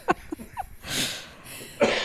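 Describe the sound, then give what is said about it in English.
A harsh, deliberately forced cough, then a couple more raspy, breathy coughs spaced out over about two seconds, with no talking. “I made myself cough.”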